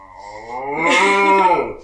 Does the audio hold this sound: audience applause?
no